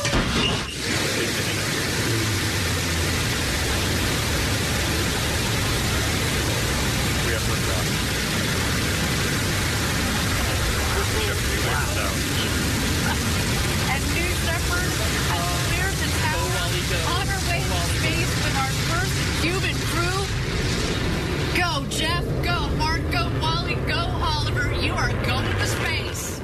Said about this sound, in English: So with 20 seconds to go, let's listen in for the launch. Of course, suborbital flight of the Shepard system. T-minus 10, 9, 8, 7, 6, 5, 4. Command engine start. 2, 1.